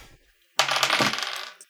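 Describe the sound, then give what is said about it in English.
Dice clatter across a hard surface in a quick, bright rattle of overlapping clicks after a brief quiet moment, then settle with one last small tap. The dice are rolled in a tabletop game for two checks made with advantage, needing to beat a 10. “So make two checks. You both have advantage. You just have to beat a 10.”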